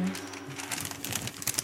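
Crinkling of a pile of paper mail, a quick burst of irregular dry crackles and rustles that builds slightly toward the end, with a faint voice murmur at the start.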